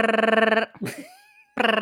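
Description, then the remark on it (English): A voice imitates a ringing phone: two loud, buzzy, rapidly trilling tones, with a brief breathy vocal sound that glides in pitch between them. “You have to do the phone noise.”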